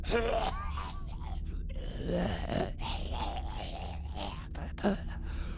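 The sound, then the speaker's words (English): Coughing and wheezing from people in a crowd poisoned by a deadly gas run together with groans and gasps, a steady, fairly loud stream of strained, overlapping breathy voices, ending in one sharper hacking burst. “At first, you just hear coughing, wheezing, which turns into sputtering, wheezing hack.”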